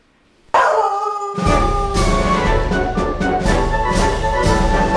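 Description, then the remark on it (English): After a moment of near silence, the intro of a song about dogs, played by an Alexa smart speaker, bursts in loudly with sustained, howl-like dog tones, then a heavy, thumping bass beat joins about a second later and drives steadily on. “It's the dog song, Alexa, sing a song about a dog.”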